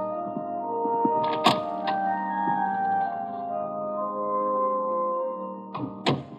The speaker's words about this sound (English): I don't turn around when the door clicks softly shut behind me.